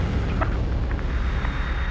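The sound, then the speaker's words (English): A rocket liftoff rumble: a loud, steady, deep roar with a hissing wash of noise above it, continuing evenly without pause and with no voices. “I feel the liftoff.”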